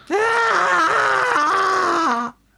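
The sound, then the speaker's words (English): A loud, sustained scream lasting about two seconds, its pitch dropping in a few wavering steps before cutting off abruptly, heard alone. “And then all of a sudden, there was a sound of screaming.”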